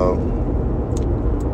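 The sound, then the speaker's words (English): Steady low rumble of a car cabin on the road while driving to Charlotte, North Carolina, a constant droning hum with road noise filling the background, with a brief voice at the very start and a couple of faint high clicks. “We doing a little car joint, taking a little ride, man.”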